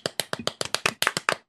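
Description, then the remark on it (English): Quick, steady hand clapping: about a dozen sharp, crisp claps in rapid even rhythm, moderately loud and with no voices over them. “Round of applause.”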